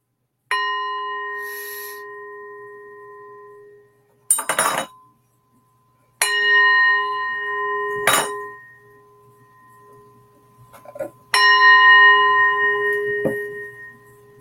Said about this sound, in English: Hitting my bell over here. The bells, the wind chimes bring in the good spirits.